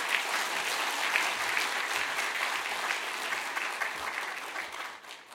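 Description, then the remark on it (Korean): A church audience applauds steadily, many hands clapping in a dense, even wash of sound that holds strong for several seconds before tapering off slightly at the end, welcoming a guest preacher. “박수로 환영하겠습니다.”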